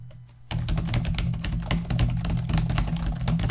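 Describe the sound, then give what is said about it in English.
After a brief quiet moment, rapid, dense clacking of keys starts up and keeps going steadily, typing that turns into fast clacking on a clattery typewriter, over a low droning hum. “Became a typewriter somewhere in the middle.”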